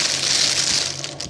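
Plastic microwave meal packaging being unwrapped: a steady, loud, dense crackle and crinkle of film, with a few sharper snaps near the end and no voices.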